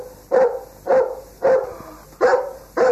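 A dog barks five times in a steady, evenly spaced rhythm, each bark loud with a sharp onset and a brief trailing tail, over a faint background hum.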